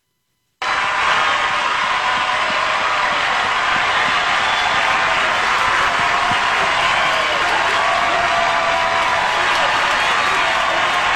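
A large crowd cheers and applauds steadily at the end of a performance on a show hosted by Kelly and Snoop, a dense wash of clapping and excited shouting that stays loud and unbroken from just after the start to the end.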